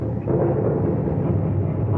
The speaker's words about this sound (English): What is that sound? It is the crashing of disintegration. Our world is breaking up.